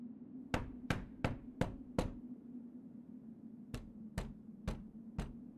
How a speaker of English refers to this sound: Knock harder, Alice. Knock harder. I can't. Hurts my knuckles.